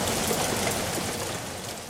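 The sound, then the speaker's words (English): Heavy rain pours down at Lancaster train station in the northwest in a steady, dense hiss of countless drops, loud and unbroken with no voices, easing only slightly toward the end. “It's wet, typically it's pouring down,”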